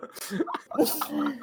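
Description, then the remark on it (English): A single sharp, breathy sneeze bursts out, surrounded by soft chuckling and vocal sounds. “There's all my sneeze particles are all over there.”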